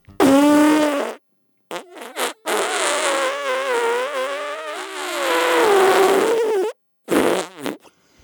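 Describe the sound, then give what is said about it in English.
A loud, buzzing mouth-made fart noise, a raspberry blown as a sound effect in several bursts: a short blast, a couple of quick sputters, then a long wavering drone and a final brief puff, with no talking. “If you could make a sound effect to convey the sense of your story, what would it be?”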